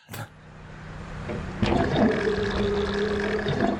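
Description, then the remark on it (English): A man's loud stomach rumble and gurgle swells after a short thump, then churns on steadily with low, watery, groaning tones while he rides in a Lamborghini. No one speaks. “He starts feeling some weirdness in his stomach. You start hearing the rumbles in the while he's in the Lamborghini”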